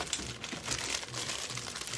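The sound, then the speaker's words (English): Steady crinkling and rustling of a cardboard box of movie candy being handled, with irregular crackly bursts running continuously for a couple of seconds and no voices. “This is the box of movie candy.”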